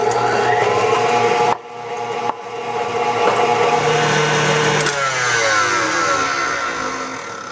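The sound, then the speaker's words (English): An electric mixer whirs loudly and steadily as it beats egg whites into soft and then stiff peaks, with a tablespoon of sugar added, its motor pitch shifting and briefly cutting out twice early on before running on continuously. “We're going to beat these egg whites into soft peaks, and then we're going to add a tablespoon of sugar”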